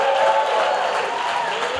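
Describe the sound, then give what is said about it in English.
An audience claps and shouts together for about 30 seconds, giving the Lord a hand clap and shout, a dense, steady roar of applause mixed with voices, loud and unbroken for the whole stretch. “Take 30 seconds and give the Lord the biggest hand clap and shout.”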